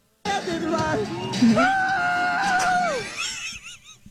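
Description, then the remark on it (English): In a played video, a man lets out a long, loud yell about two minutes into the video. The yell rises, holds a strained high pitch for over a second, then falls away, with a noisy crowd-like background underneath. “The yell is incredible because the yell comes 2 minutes in.”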